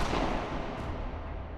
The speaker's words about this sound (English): But when they got to Martha's car, the perfect night was shattered by a thunderclap of gunfire.